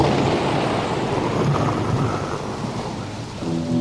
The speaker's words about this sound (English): He said, "We got to put in some rain and thunder." So sure enough, the whole thing starts with